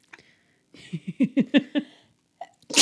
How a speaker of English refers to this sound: Bless you.